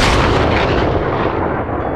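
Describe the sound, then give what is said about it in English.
A lightning strike hits with a loud, sharp crack that rolls straight into a dense, rumbling roar, its crackling highs slowly fading over two seconds while the deep rumble stays strong. “One day, you're walking through a swamp when suddenly you're struck by lightning.”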